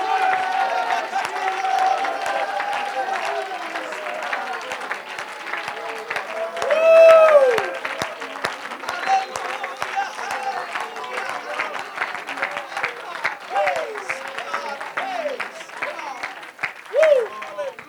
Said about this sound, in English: Everybody in the building tonight, hallelujah, that has breath, can you clap your hands and can you shout to the name of Jesus as loud as you can shout right now?